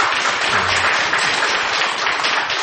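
Steady audience applause fills the whole stretch, a dense, even wash of many hands clapping at constant loudness, with a brief low murmur of voices early on.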